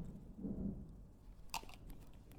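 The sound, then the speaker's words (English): A faint rumble of thunder from a thunderstorm rolls low and muffled for a moment, followed by a brief crackle, with no voices present. “Did you guys just hear that? That was a thunderstorm.”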